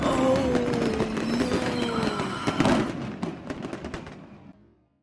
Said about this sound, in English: Does Cube explode? You wait for a second, and then you hear a thud, and then you hear an explosion.